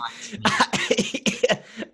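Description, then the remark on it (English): A loud burst of several rough coughs in quick succession, with a throaty, raspy quality and short gaps between bursts, heard on its own without talking. “I'm coughing well.”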